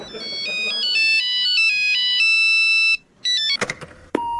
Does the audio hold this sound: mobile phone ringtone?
yes